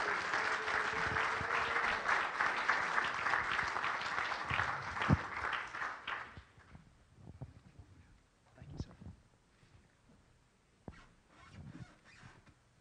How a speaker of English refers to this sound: And if you love Jesus and your pastor, give him a hand clap as your pastor comes.